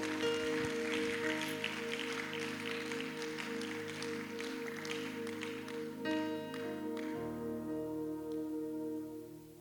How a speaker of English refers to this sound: Clap for this Jesus.